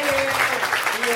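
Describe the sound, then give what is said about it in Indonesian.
An audience claps steadily in a dense, crackling wash of applause that runs the whole moment, with a faint voice or tone humming underneath. “Tepuk tangan dulu dong.”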